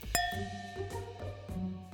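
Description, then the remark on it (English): A single bright clink of glasses touching in a toast, followed by a clear ringing tone that lingers and slowly fades over low background noise. “Cheers to that.”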